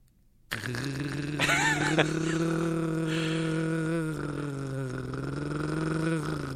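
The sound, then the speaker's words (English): A voice imitates an old broken Jaguar car engine, starting abruptly and holding a loud, low, rattling buzz at a steady pitch for about six seconds, with a brief rise in pitch partway through. “Boy, you've done Zuckerman and now an old broken Jaguar engine.”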